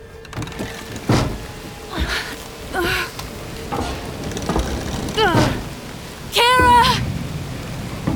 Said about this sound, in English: The rain.